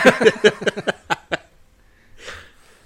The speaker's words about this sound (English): Sorry to cough there.